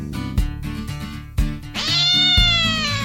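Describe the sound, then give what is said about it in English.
A cat hidden under a bed springs out and lets out a loud, drawn-out meow, rising into a long wailing yowl after a few soft thumps at the start. “A cat that Tom had hidden there sprung out at Aunt Polly.”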